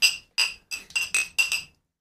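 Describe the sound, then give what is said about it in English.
Beer glasses clink together in a toast, around seven bright, ringing taps in quick succession over two seconds, each with a short shimmering decay, fairly loud with no talking. “Cheers. Cheers.”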